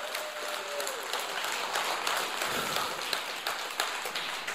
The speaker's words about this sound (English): And if you believe that and receive it, give the Lord a great hand clap of praise. Hallelujah.